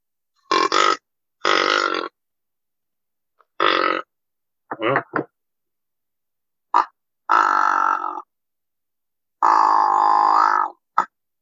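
An old plastic deer grunt call, used in deer hunting and with a plastic-sounding tone, blown in about seven separate bursts, some short and clipped, others drawn out, each a loud, buzzy, croaking grunt with irregular pauses between and no talking.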